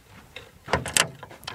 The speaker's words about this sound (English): Weird. That wardrobe door seemed to open by itself. I'll just close it.